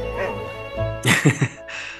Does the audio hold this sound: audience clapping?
no